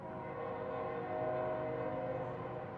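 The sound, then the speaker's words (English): A train rumbles past on a railroad line beside a small park on the north edge of downtown Lawrence, near the Kansas (Kaw) River: a steady loud roar of wheels with sustained droning tones layered over it, holding level for a few seconds with no voices. “On the north edge of downtown Lawrence, tiny Robinson Park is hemmed in by three busy streets, a railroad line, and the Kansas or Kaw River.”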